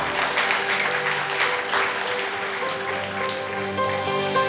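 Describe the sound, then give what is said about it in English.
A church audience at Hope Point Church in Spartanburg, South Carolina, claps steadily and fairly loudly, a dense wash of many hands applauding together, with sustained musical tones ringing underneath throughout. “Or if you like a modern translation to get the rest of you clapping, I will never again remember their sins.”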